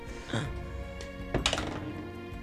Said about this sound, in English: Well, bounced out. It's a 8. What's the point of having a dice tray if you can't keep it in the tray? It bounced out.